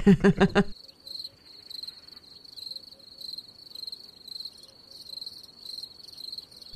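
crickets chirping

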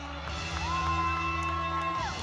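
crowd cheering and whooping

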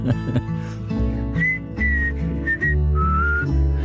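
person whistling a tune

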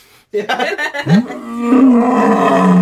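big cat roar

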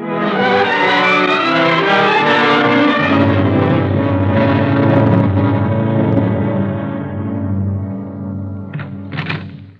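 car driving

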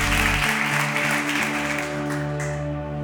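applause

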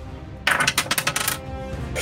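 twenty-sided die being rolled

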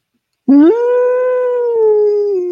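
howling like a wolf

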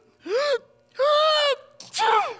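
sneeze

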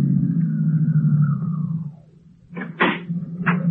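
car engine idling

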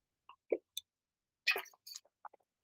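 sipping a drink

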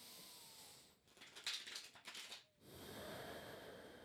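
tarot cards being shuffled

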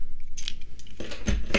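car keys jangling

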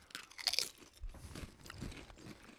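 crunching potato chips

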